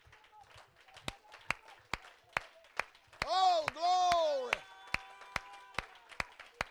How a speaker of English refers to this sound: You ought to all clap your hands. Go ahead, let's all clap our hands.